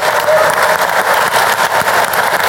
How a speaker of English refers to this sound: No golf clap today. No golf clap. Yeah, that's right. Big clap.